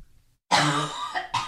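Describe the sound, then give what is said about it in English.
A forceful cough from a tickle in the throat bursts out after a brief silence, followed by a couple of shorter raspy throat-clearing coughs in quick succession. “I have a little tickle in my throat. Sometimes when I cough, I gag, and I don't know why.”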